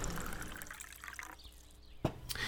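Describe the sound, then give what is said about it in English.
Apple cider pours briefly into a glass with a soft trickle, followed by a sharp clink and a faint splash near the end; no one speaks. “He poured more apple cider and took a few swallows.”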